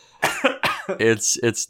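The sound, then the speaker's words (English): A person coughs and sputters, four or so harsh, raspy bursts in quick succession with brief wheezy breaths between them, like a short choking fit, after breathing in the fumes of a drink. “I think my throat just got like a molecule breathing it in.”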